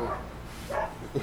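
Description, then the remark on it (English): Dogs barking outside, a couple of short barks in quick succession with a muffled quality, heard on their own without any talking. “Speaking though. Of dogs, the dogs outside park.”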